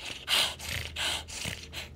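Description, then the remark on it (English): A voice imitates a panicked, out-of-breath kobold breathing heavily: a quick run of about five raspy, snorting gasps in close succession, loud, with no other talk. “You can't see him, but you can definitely hear his snorts and wheezing.”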